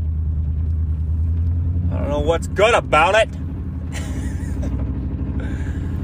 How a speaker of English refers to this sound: As you can tell, I have not got my exhaust fixed yet. Supposed to get her done on Monday. It's so funny. I had multiple people, including the mechanic that is going to fix it, say, "You drove it from Denver like that?"